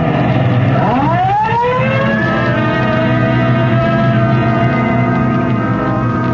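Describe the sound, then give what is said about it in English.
A police car siren, running Code 3 with red light and siren, winds up quickly in pitch, then holds a loud, steady wail over a low engine rumble for several seconds, with no one speaking. “Code 3, red light and siren.”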